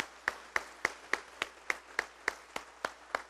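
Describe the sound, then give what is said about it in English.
An audience claps in praise of God in a steady, even rhythm, about eleven sharp, crisp claps in just over three seconds, with no talking over them. “Can we just take 10 seconds this morning and give God a hand clap of praise this morning for his goodness?”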